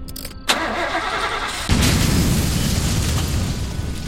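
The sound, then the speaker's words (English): A Ford Econoline van's engine cranks over on a hot, steamy night, then a sudden heavy boom bursts out as the van's gas tank explodes, swelling into a loud, sustained low roar, with no voices. “It must have been the gas tank exploding.”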